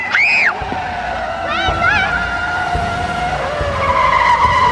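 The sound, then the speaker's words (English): A truck skids to a stop as its driver tries to stop for a dog named Weezer, with loud tire screeches: a sharp opening squeal, a few wavering chirps, then a long sustained screech over a rumbling engine. “I still see that truck in my dreams.”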